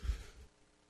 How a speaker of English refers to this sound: Gotta love whenever you come back from break and you just can't stop coughing. But more importantly, you gotta love it whenever you take a break, take a sip of drink for the working man, and it goes down the wrong pipe.